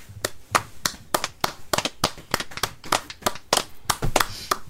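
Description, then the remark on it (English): A steady series of sharp hand claps, around fifteen in under five seconds, moderately loud with a slightly uneven rhythm and no voices. “I feel like that was not, the hand claps were a little tiresome.”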